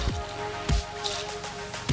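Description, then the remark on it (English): Soda water being poured into a glass, filling it up to the top for a vodka Collins, with several irregular splashy glugs and drips over a faint fizzing hiss and a low steady hum; no one speaks. “Something with bubbles. Fill your glass up to the top.”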